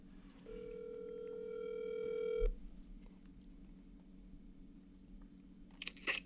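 A telephone call being placed: a steady, buzzing dial tone holds for about two seconds, then a quiet line hiss, followed by a couple of short, sharp electronic bursts near the end. No one speaks.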